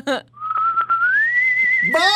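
A person whistles one long, sustained note as a goodbye, slowly rising in pitch, clear. Short bursts of a voice come just before and right after it.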